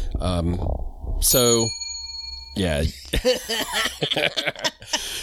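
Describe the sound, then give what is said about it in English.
A single bright bell ding rings out and hangs in the air with a clear, slowly fading tone, with people talking and laughing just before and after it. “That's what the bell is for. That is not a passive-aggressive bell on my end.”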